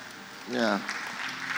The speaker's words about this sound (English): Oh, are you clapping for him?